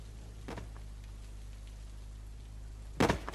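Heavy rain pours down in a storm in a steady, even hiss over a low rumble, broken by two brief thuds, one early and a louder one near the end. No voices.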